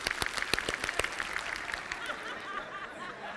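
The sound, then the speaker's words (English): A live crowd claps rapidly, a dense rattle of quick hand claps with a few sharp claps standing out early, thinning slightly toward the end amid faint murmuring and chuckles. “Just clap right this. Clap right this. And clap faster.”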